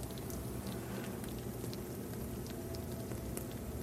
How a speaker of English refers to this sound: There's the tart bubbling outside of the oven. It has this nice, wonderful fragrance of peaches and almonds and buttery goodness.